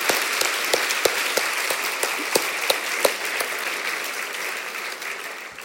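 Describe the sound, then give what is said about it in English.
An audience applauds steadily, a dense wash of many hands clapping at a fairly even level, with a few sharper individual claps standing out. No one speaks over it. “another round of applause, ladies and gentlemen.”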